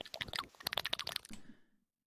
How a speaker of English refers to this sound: So just get it together and stop eating on the fucking mic. I understand that you're hungry. Mute your shit. Nobody wants to see your jowls slapping around either.